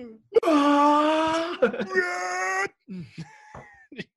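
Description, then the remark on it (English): A loud, drawn-out human scream with a strained, wailing tone, broken briefly and then resumed, followed by a few short, quieter vocal bursts. “I feel like that is a good closing scream to this to this great fucking podcast.”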